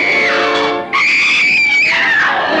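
A woman lets out a loud, sustained, high-pitched scream in two long bursts separated by a brief gasp, intense, with no talking.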